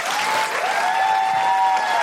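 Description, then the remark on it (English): An audience at the Wheeler Centre claps loudly and steadily for Claire Hooper in a dense, continuous wash of applause, with a sustained high-pitched whistle or cheer riding over it throughout. “Can I have a big round of applause and a big thanks for Claire Hooper?”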